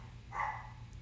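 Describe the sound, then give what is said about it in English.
A single short bark from excited dogs, somewhat muffled, rises briefly over a low steady background hum, with no voices. “The dogs are really excited.”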